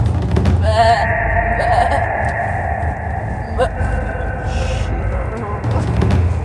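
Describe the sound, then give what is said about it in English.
A person imitates a sheep bleating: one long, quavering baa that wobbles in pitch for a few seconds, with a steady low rumble underneath. “It's the sheep coming out of me.”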